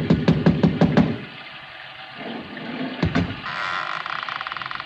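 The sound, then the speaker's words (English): A quick run of about six sharp, loud raps on a door made with a bronze idol, followed by a steady background hiss and then another couple of hard knocks a moment later. “I lifted the bronze idol and rapped on the door with it, and the voices stopped.”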